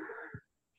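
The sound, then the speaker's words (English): A single sneeze: a sharp, breathy burst lasting under half a second, ending with a brief low puff, followed by silence and then the start of another sound. “Excuse me. Bless you again.”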